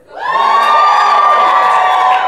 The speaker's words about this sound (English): Okay, Worf, let's cheer for Worf.